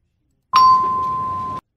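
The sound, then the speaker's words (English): A novelty "no bell" is pressed once, giving a single loud, steady ring that starts abruptly, holds for about a second, then cuts off cleanly, with silence on either side. “Okay, push that damn no bell.”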